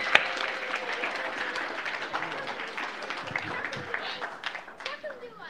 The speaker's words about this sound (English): Can y'all give the kids a clap?